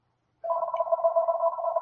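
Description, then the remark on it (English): A phone rings with a steady electronic warble that starts abruptly after a brief silence and continues unbroken, fairly loud, with no one speaking. “Is that your phone?”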